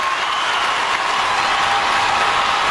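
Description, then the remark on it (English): Sustained crowd applause at a town hall with Senator Marco Rubio, after a question about NRA donations: a dense, steady wash of many hands clapping at even loudness throughout, with no break and no voices standing out. “I mean, I left the applause in just so you could hear it.”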